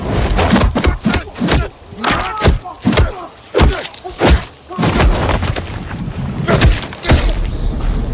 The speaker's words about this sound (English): If the sounds of the punches in the new Batman movie are any indication, there's going to be some violence. Just listen to how brutal this sounds.